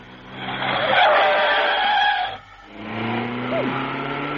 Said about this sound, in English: Oh, darling, do pull over. That car's trying to pass us.